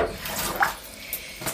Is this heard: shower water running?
yes